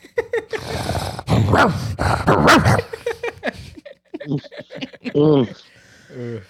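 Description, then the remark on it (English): A person imitates a dog barking, letting out several loud, rough bark-like yelps in an irregular string, with shorter whining bursts near the end. “Let me hear you bark”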